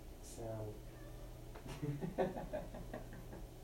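A cat meows, a short call followed by a few more drawn-out meows, set against a low steady hum.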